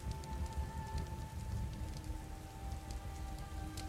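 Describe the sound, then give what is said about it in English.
Steady rain patters on roof shingles during a storm in a dense, even wash of drops, moderately loud, with a soft low rumble beneath and no voices. “All that's left is rain on the shingles above you, and the comforting crackle of the fire in the hearth, soft and peaceful.”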